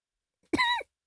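A single short cough, a quick throaty burst lasting under half a second, surrounded by silence with no talking.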